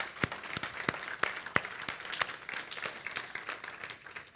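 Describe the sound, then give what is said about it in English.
An audience applauds all the mothers on Mother's Day, a dense crackling wash of many hands clapping with a few sharp, louder claps standing out, holding steady for about four seconds with no voices. “Can we give all of our moms a big round of applause?”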